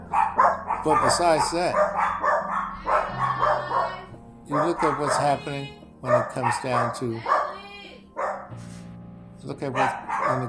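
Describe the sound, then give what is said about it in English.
A dog barks in short bursts while a man keeps talking steadily over it, the barking partly masked by his voice. “Such as the dogs bark.”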